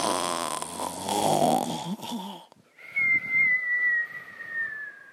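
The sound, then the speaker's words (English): A voice imitates the Gruffalo snoring during a reading of The Gruffalo's Child: a rough, rumbling inhale followed by a high, whistling exhale, loud, with no other sounds around it. “One snowy night, when the Gruffalo snored,”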